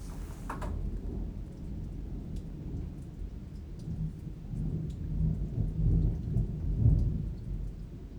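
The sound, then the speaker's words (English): A thunderstorm rumbles steadily, low thunder rolling and swelling toward the end over a constant hiss of rain, with scattered raindrop ticks and no voices. “Oh, listen, it's a thunderstorm.”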